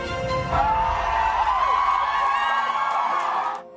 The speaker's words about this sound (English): In jarring images from overnight, crowds of pro-abortion supporters in Ohio cheer the passage of Issue 1, which now paves the way for abortion through all 9 months of pregnancy in the Buckeye State.